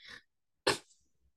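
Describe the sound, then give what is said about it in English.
A short, breathy huff followed by a louder, harsher burst about half a second later, like someone clearing their throat, then a faint low rumble as it trails off. “So let me clear my throat.”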